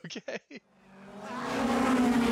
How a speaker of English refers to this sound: A squad of sort of tuner street race cars pull up, and now we have more of the gang show up that we'll get to know